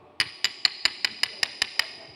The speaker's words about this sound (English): You know, this bell is great, but if I grab a hold of this bell, if my ego grabs a hold of it, you want to know what the bell sounds like when my ego grabs a hold of it?